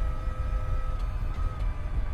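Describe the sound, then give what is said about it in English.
A small Quantum electric car, driven to the factory on a sunny weekday morning, hums along with a steady, futuristic spaceship-like whine of sustained tones riding over a low rumbling drone, continuous and even throughout, with no voices. “The engine sounds less like a traditional car and more like some kind of spaceship.”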